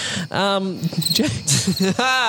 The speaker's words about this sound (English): This is a minute and 15 seconds of cricket noises.